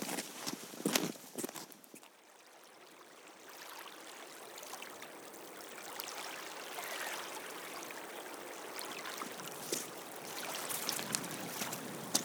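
Footsteps walk steadily through a sea gate at the western end of a village street and down a ramp onto a pier with the tide in, a series of soft steps over a continuous hiss of water and open-air ambience, with no talking.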